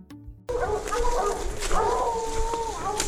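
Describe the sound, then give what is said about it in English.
Several hunting hounds wearing GPS collars bay and bark loudly and continuously at a raccoon they have cornered in a scrap metal junk pile in the woods, their drawn-out, howling calls overlapping after a brief quiet start, sounding close by outdoors. “We can just follow their barking.”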